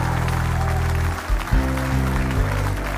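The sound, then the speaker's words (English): An audience gives a clap offering, clapping in a steady, dense wash of applause while deep, sustained organ or keyboard chords hold and shift underneath, with no one speaking. “If you receive that, give him a great big clap offering.”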